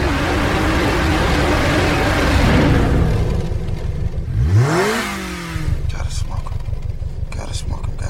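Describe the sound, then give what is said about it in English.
An American muscle car engine in a scene from the film Too Fast, Too Furious revs up hard, loud and throaty, its pitch sweeping sharply upward, then settles into a rough, pulsing idle with a low rumble. “Your engine ain't as big as your mouth.”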